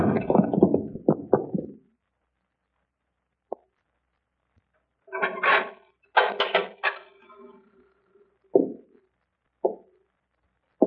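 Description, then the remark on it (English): A cupboard door is shut on a woman inside with a cluster of heavy thumps, then a knife is jammed in to wedge it, giving clattery metallic rattles and a few sharp knocks. “Shut her in there, in the cupboard.”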